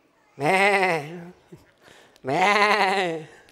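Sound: voice imitating sheep bleating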